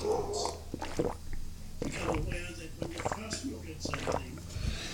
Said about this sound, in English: Excuse me, I'm going to drink some water here. I'm a little parched.